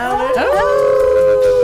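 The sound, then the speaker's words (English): Several voices join in a loud, sustained imitation of a howl, howling at the Moondog, the pitch sliding up and then holding steady in a long drawn-out tone. “No, we're gonna howl at the Moondog.”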